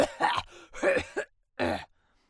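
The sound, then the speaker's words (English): A few harsh, hacking coughs come in quick rough bursts, fairly loud, with short gaps between them and a brief quiet tail at the end. “Hacking cough.”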